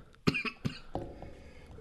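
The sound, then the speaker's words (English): A person getting over a cold gives a few harsh coughs in quick succession, then a softer throaty trailing sound fades into quiet. “Sorry, I'm kind of getting over a cold, so coughing a lot.”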